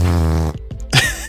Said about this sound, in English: I listened to a lot of farts to get that one fart picked up.